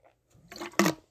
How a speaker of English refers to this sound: Please just give me a minute. Let me just take a sip of my water.